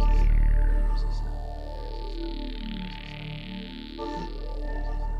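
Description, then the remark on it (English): Sonified gravitational waves from black holes: a dense, eerie drone of layered tones that swell, bend and interweave, with shimmering sweeps and a steady, fairly loud hum throughout. “Gravitational waves sounding from a black hole.”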